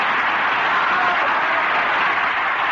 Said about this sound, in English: Turpin's a fabulous ventriloquist. Oh, just listen to that applause.